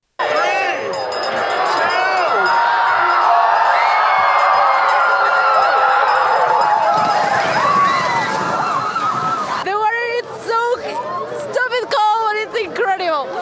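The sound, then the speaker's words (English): A large crowd cheers and shouts continuously, with splashing and sloshing water as people run into the sea at the New Year's polar bear swim at English Bay, Vancouver; the roar is dense and loud for about ten seconds before breaking into scattered voices. “First, let's have a listen to some of the highlights from yesterday's polar bear swim at English Bay.”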